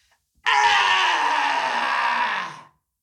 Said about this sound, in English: So what I'm going to do is I'm going to put my tongue out and I'm going to cross my eyes and I'm just going to let a big sound out. It's called lion breath.